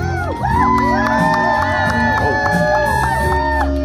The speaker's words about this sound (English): He sort of just slowly. Another cheer from the crowd. Listen to that crowd, guys.